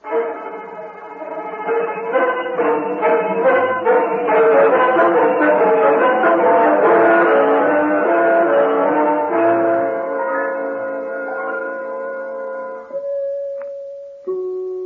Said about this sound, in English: Did you not hear those beautiful chimes? That is enough pushing on the bell